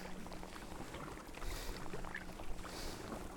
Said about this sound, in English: There goes the tour boat.